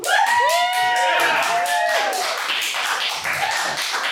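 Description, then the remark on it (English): An audience bursts into steady, dense applause for the host after she says she is a transgender lady, with high whooping cheers rising over the clapping in the first couple of seconds, then the clapping carries on a little thinner. “You may applaud.”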